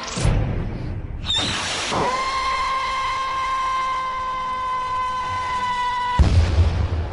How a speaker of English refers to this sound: Firework. Okay, it's fireworks.